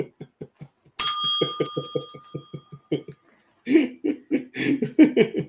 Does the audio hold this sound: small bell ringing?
yes